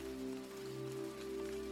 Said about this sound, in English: Tucked up in bed, with light rain falling outside the window,